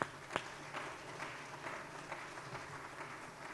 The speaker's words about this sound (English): Can we give our kids another round of applause?